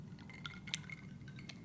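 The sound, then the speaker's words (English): Glasses clink together in a toast: a few light, ringing taps spaced apart, with faint liquid sloshing beneath them. Quiet, with no talking. “Raise a glass. Cheers.”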